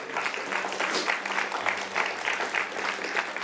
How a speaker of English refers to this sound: I want to tell you, you can clap tonight.